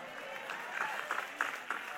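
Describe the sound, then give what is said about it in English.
An audience claps together, a dense patter of overlapping hand claps at a moderate, steady level, with a few sharper claps standing out over the crowd. “If you're not clapping, you're the one I'm talking about.”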